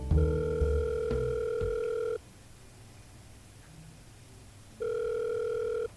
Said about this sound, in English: I picked up the phone and called the number.